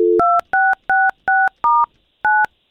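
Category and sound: signal or alarm, telephone keypad dialing tones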